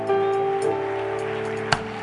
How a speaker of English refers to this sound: Put your hands together. Let's receive Bishop. Keep on clapping your hands. Keep on clapping your hands.